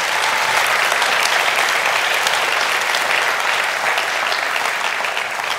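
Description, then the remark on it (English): A large church audience claps steadily and loudly throughout in support of a baptism, a dense, even wash of applause with no pauses and no voices standing out above it. “Clap for that one, because that's good.”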